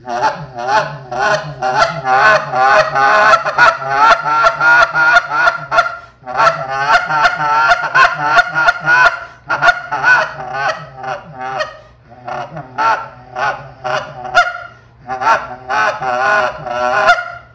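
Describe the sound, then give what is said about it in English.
A goose call blown in a rapid, continuous stream of murmurs and short clucks with sharp spit notes between them, loud, with only brief pauses and no talking. “So that's basically that murmur with that cluck. The spit note between that is in that murmur cluck.”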